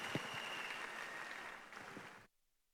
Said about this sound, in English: Please celebrate Jesus with your clap and have your seat.